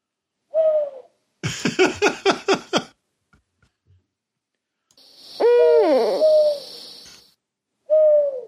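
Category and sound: vocal imitation, owl hooting imitation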